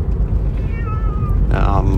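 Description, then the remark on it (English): Two drawn-out, plaintive meows from unhappy cats riding in a car, one after the other, over a steady low rumble of the car's engine and road noise. “Right now in the background, you can hear my cats. They're really unhappy about, you know, being in a car.”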